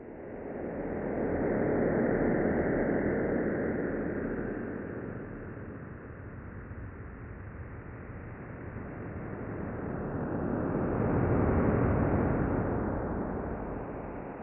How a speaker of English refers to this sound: Now it's time to over-exaggerate our overpowered and overindulgent overlord space sound. All right, close your eyes, and I'm going to play for you an incredibly amazing sound like you've never heard before.